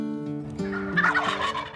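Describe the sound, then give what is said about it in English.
A wild turkey gobbles: a single loud, rapid, rattling warble lasting under two seconds, with no talking. “At the beginning and the intro, when you hear turkeys gobbling, oh man, that gets me fired up for turkey hunting.”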